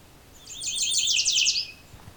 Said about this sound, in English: Okay, we got a yellow warbler. Couple fairly loud yellow warblers here.